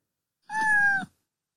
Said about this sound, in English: I think more meows are in order. Just say meow for more.